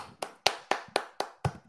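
A single pair of hands claps about seven times in a quick, steady rhythm, each sharp crack close and clear, with no talking over it.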